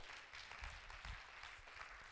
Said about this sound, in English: In the last 2 years, I'm serious, has God done some things for you that you can't explain? Clap your hands.